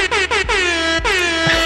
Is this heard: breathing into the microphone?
no